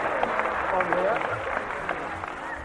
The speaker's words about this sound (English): Give her a clap for that. That's real good, isn't it?